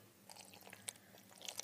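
Soft, wet chewing of freeze-dried pineapple rehydrated with water in a jar, a quick irregular run of faint squelchy bites and little clicks, with no talking.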